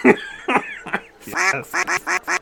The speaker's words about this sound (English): I don't know if I'm comfortable with a duck noise every time I say fuck. Is it going to do that every time? Every time.